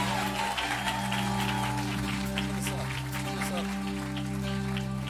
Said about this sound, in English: Come on, if you're gonna clap, give him a good hand clap today.